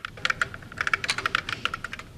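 Rapid clicking of keys on a computer keyboard, a quick irregular run of sharp taps, with no voices.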